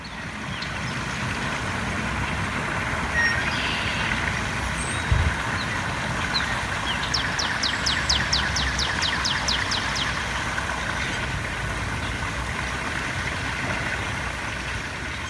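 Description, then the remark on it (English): Steady, even outdoor ambience on a walk near a river in a neighborhood, a soft continuous rush with no traffic or people's chatter, broken midway by a brief, rapid bird trill. “I recently took a walk near a river in my neighborhood. Note, there's no traffic or people's chatter in the background.”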